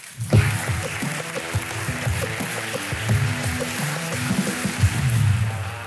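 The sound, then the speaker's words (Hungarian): Steady audience applause fills about six seconds as the head of the Vodafone Data Team is welcomed onto the stage, a dense wash of clapping mixed with a low musical backing underneath, holding a fairly even loudness throughout. “Fogadjátok nagy tapsal a színpadon a Vodafone Data Team vezetőjét”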